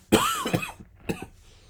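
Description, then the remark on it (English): A person coughs: a loud, rough double cough, a brief pause, then one shorter, softer cough, with no talking around it. “Hold on, let me cough.”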